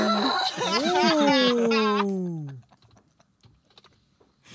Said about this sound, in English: Oh man, let me just say, okay, that was an ugly cry.